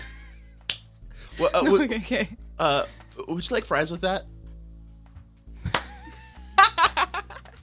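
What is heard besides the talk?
slow clap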